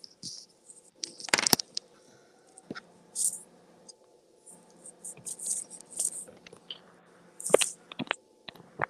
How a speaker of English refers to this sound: Let me just plug in my phone. It's almost dying here.